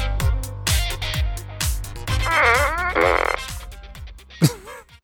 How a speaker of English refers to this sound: Little fart noise. Yeah, I have a gun. It's a Minions gun.